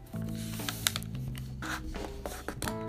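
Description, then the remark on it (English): Paper handling: a few crisp crinkles and soft rubbing swipes as a sheet of paper is folded lengthwise and creased, with steady tonal background music humming underneath. “So you're gonna get a piece of paper. And you're gonna fold it on the long side, so you're gonna go sideways.”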